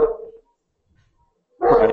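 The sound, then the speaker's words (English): A dog lets out two bursts of excited barking, one at the start and one near the end, separated by a brief quiet gap, fairly loud. “The dog's going a little crazy.”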